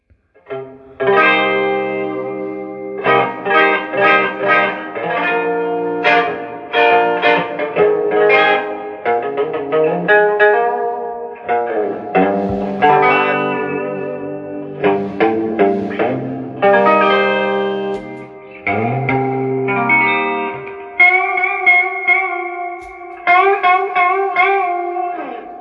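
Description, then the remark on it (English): An electric guitar played through a Champion 40 combo amp with the reverb turned up plays a clean, ringing melodic phrase with sustained notes and chords, drenched in spacious reverb, fairly loud with no talking. “Well, I turned it down to try and get more close to the tone, but I'm feeling like the reverb crank that reverb now.”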